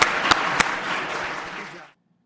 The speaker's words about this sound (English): Let's give the Secretary a round of applause and thank him for taking such time.